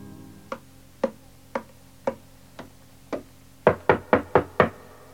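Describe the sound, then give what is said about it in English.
Knuckles rap on a table, first in slow, evenly spaced single knocks imitating footsteps, then a quick, louder burst of five raps imitating someone knocking at a door. Dry, with no voices. “Or rapping on a table to imitate the noise of footsteps and someone knocking at the door.”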